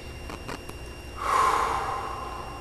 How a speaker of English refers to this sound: One of the ways that we can see how much stress we're feeling is by noticing how it affects our breathing. It often shows up in tightness in the chest. So what I'd like you to do is take a cleansing breath.